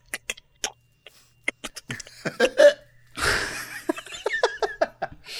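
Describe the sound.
A person makes a string of sharp mouth clicks imitating Morse code, in uneven groups of quick taps and pauses, broken midway by a short breathy burst like a stifled laugh, then more clicking.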